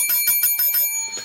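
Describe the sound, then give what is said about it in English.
A match bell, called for by Nick Patrick, rings in a quick burst of about six rapid strikes, its bright metallic tone sustaining between hits. Fairly loud, with no voices present. “And now, after all of this, after all of the things that have happened, now Nick Patrick calls for the bell.”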